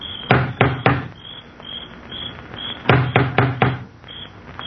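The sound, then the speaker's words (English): An elderly man knocks with the huge knocker on the front door of a crumbling mansion: two sets of three loud, heavy knocks, a pause between them, while crickets chirp steadily in the background. “He looks about uneasily, then lifts the huge knocker on the door.”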